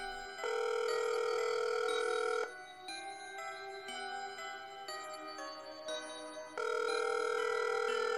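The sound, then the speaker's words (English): A phone call rings out with two long, steady electronic ringing tones separated by a softer pause. The ringing is clear, and no one speaks. “She made another phone call.”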